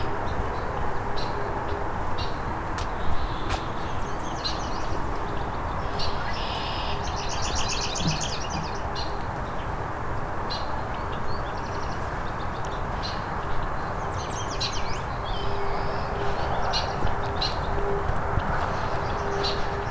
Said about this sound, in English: And head towards the other warbler.